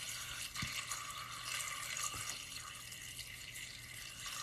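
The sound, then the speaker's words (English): A steady stream of water, up to a gallon, pours into a container, a continuous soft splashing rush that lasts the whole moment at a fairly low level, with no one talking. “I'm just gonna pour this all in there.”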